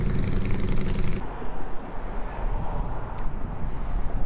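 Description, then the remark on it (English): A motorcycle idles at a stoplight with a low, throbbing engine rumble that is steady and fairly loud. Its tone is richer for the first second, then it settles into a rougher, noisier drone. “So I'm just gonna pause for a second because there's a motorcycle at the stoplight and it's a little loud.”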